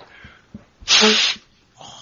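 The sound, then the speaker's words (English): A single loud, breathy blast of someone blowing their nose, lasting about half a second, with soft rustling before it and a short faint snuffle afterward. No one speaks. “I'm here just blowing nose.”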